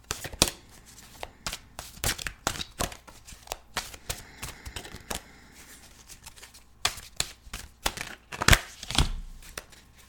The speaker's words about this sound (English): Love that sound. All right, now they're all shuffled. Let's see what we get.